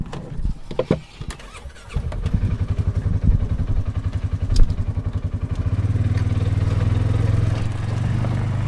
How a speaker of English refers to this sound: drives us around in a very small all-terrain vehicle. He calls it a buggy. Locals, he tells me, call it a side-by-side.